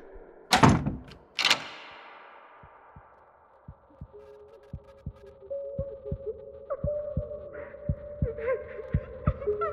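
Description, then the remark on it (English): A door shuts with a loud thud, quickly followed by a second sharp clunk as it locks. Then soft, steady low thumps pulse on beneath a quiet humming tone. “You then turned off the light, closed the door, and locked it shut.”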